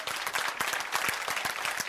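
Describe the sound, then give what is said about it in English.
A crowd claps steadily, the dense patter of many hands filling the room with moderately loud, continuous applause and a few sharper individual claps standing out. “Is that the best clapping y'all can do?”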